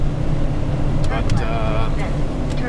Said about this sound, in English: Let me just set the tone here. We're in this F450 box truck. We've got a couple hickory bunk beds in the back, as well as a couch. And this is a fairly new truck, so it's not too bad. It's a fairly comfortable ride, as box trucks go.